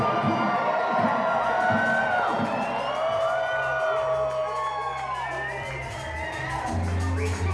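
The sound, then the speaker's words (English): A large crowd in Los Angeles cheers and whoops loudly and steadily for a DJ, with many overlapping high-pitched shouts and yells sliding up and down over a dense roar of voices. “So we need all of you, Los Angeles, make some big respect noise for the one and only ….”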